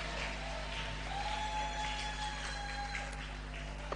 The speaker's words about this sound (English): Oh, your clapping is very weak.